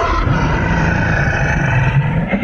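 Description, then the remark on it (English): A person gives a loud, sustained, raspy roar imitating a dinosaur, a single growling vocal bellow lasting a couple of seconds, with no other talking. “Okay, I'm going to go first, and then I'm going to ask you to roar like a dinosaur.”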